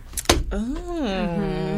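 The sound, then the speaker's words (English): A single sharp, loud slap as a Moleskine notebook is slammed onto the floor, followed at once by a drawn-out vocal sound from a person. “That was an actual Moleskine notebook that got just slammed to the floor.”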